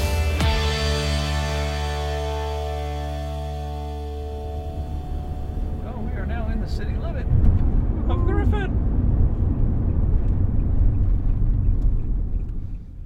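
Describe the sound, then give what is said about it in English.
A car driving toward Griffin: the engine hums with a steady tonal drone that gives way to a continuous low road rumble, loud, with brief muffled voice-like sounds partway through. “All right, well, why don't we get in the car and head to Griffin, guys?”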